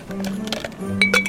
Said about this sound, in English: Right, okay, in with the lemon and a good old ice cube.